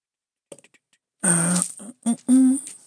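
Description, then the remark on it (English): A few light clicks, then loud rattling clatter in several bursts as dice from a bag of table-game dice are shaken and rolled out onto a surface, with no one talking. “Oh, do I hear dice coming out? Yes, I do.”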